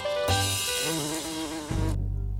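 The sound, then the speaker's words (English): A wasp buzzes loudly for about two seconds, its droning pitch wavering up and down before settling into a lower, steady hum. “I'd rather have a madman wasp, cause he plays all the music.”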